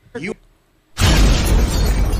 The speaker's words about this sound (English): That's absolutely coming? A car crash.